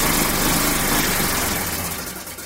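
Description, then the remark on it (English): A car engine starts up and runs with a rough, rattling putter, loud, then gradually weakens and tapers off as it sputters out. No one speaks. “adding the sound every time the car starts up”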